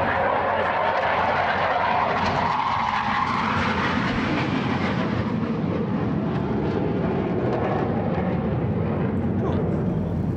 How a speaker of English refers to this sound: And hold one sec. BAE Hawk doing its flyby.